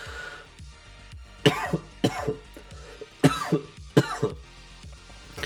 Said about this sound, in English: We're almost done. We're almost out of the coughs. That's what happens, you know? When you put stuff in your lungs, it shouldn't really be there.